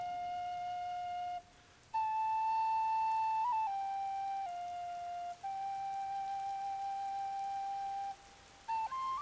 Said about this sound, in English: Phoebe and Penny walked along Main Street, huddled together beneath an umbrella in the rain.